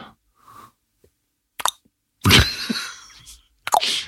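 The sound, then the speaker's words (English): Water drips and plops from the top of a cave at irregular intervals, a handful of sharp splashes, one louder with a lingering ringing tail, between quiet gaps. No one speaks. “And I love that sound of just water constantly dripping through from the top.”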